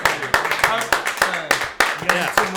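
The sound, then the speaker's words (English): A run of sharp, crisp hand claps, about eight in a fairly steady rhythm, each one loud and snappy, with people's voices talking and murmuring underneath. “There's the clap you needed tonight.”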